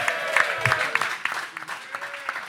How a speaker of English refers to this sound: We got fucking 24 people here at the fucking State of Fitness Boxing Studio in North Bergen, New Jersey. Clap your hands. Thank you for hosting us.